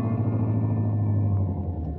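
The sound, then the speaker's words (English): A car engine rumbles steadily as the car slowly pulls into a shed at the end of a deserted lane by a dock on an island in Florida, a low, even drone with a faint whine above it and no voices. “She pulled the car into a shed.”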